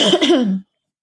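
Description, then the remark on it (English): A single short throat clearing, a gravelly rasp with a rough vocal tone that lasts about half a second and then cuts to silence. “Sorry, I need to clear my throat.”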